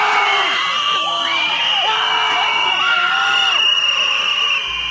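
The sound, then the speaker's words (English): A crowd of protesters shrieks and screams continuously at a Black woman, yelling "F white supremacy", many high, wailing cries overlapping and rising and falling in pitch, loud throughout. “Did you hear that? Like shrieking from hell? Just like these demons, these just screaming in her face.”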